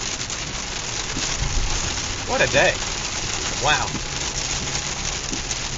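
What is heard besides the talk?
rain falling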